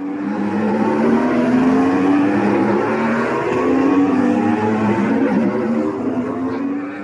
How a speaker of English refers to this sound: These electric-powered Formula E racing cars sound very different to their Formula One counterparts, although they look identical. The E cars, though, are a bit slower, reaching top speeds of 320 kilometers per hour.